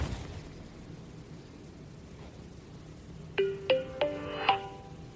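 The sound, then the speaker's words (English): A brief startup melody from smart glasses being put on: four bright, chiming electronic notes in quick succession, roughly rising in pitch, following a few seconds of faint low handling rumble. No one speaks. “And hopefully you heard the startup music.”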